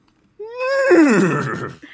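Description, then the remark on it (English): A person does a loud whinny impression, a single rising-then-falling neigh lasting about a second and a half, with a breathy wavering trail at the end. “I was like, I'm going to give my best horse impression.”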